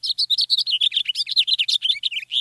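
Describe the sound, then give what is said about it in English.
A house finch sings a fast, warbling run of bright, varied notes, clear with no other sounds, closing on a drawn-out buzzy note. “Here's a house finch, more melodic and with a buzzy note near the end.”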